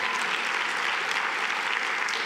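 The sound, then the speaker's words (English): A crowd breaks into steady, full applause, many hands clapping at once in a dense, even wash of sound with no voices rising above it. “If you're going to clap, clap. Don't give me a petty clap.”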